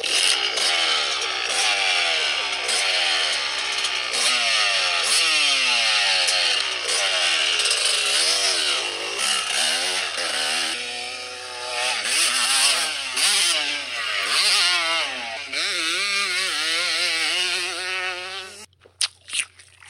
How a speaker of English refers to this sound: This is what a two-stroke engine sounds like.